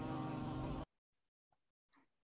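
Loud bee buzzing drones steadily for under a second, then cuts off abruptly, leaving near silence broken by a couple of faint, brief rustles.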